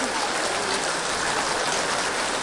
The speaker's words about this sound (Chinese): 好，谢谢堪布简短有力的回答，随缘，谢谢掌声。